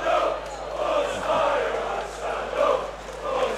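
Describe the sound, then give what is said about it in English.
A loud, continuous roar of a football stadium crowd during a match, swelling and dipping in waves of massed shouting and chanting with no pauses, loud enough to drown out the referee's whistle for a free kick. “Yeah, I've not heard the whistle really as well because of all this noise. It's the other part of the atmosphere.”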